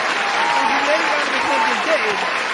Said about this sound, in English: Celebrate the time. Come on. Round of applause for the FIA.